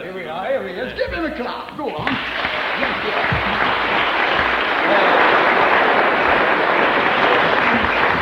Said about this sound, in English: Here we are. Give him a clap. Go on.